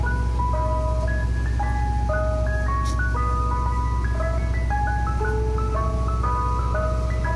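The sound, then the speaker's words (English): A tinkly, music-box style Mr. Softy ice cream truck jingle plays a bright repeating melody of clear chimed notes over a steady low engine hum, continuous, with no one talking. “You guys know this? It's an ice cream truck.”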